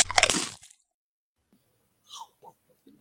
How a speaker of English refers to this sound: Here we go. We are live. The little munch, munch, munch, munch.